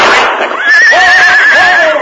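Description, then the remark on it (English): A horse, panicked by the sound of a gunshot fired into the air, lets out a loud, shrill whinny lasting about two seconds, its high pitch wavering and trembling throughout, with a frantic, panicked edge and no voices present; it rears high, then bolts north. “The horse reared high, then bolted north.”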